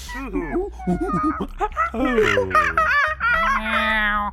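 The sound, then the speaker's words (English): Women's voices imitate monkey calls, a run of high, bouncy hoots and whoops with rising and falling pitch, loud and continuous, breaking into laugh-like yelps. “But you gals, you're really rocking the monkey sound.”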